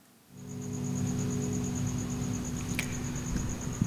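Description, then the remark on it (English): A steady, high-pitched cricket chirp keeps going without a break over a low, droning hum, with no voices. It starts just after a quiet opening and holds at an even level throughout. “Cut the cricket.”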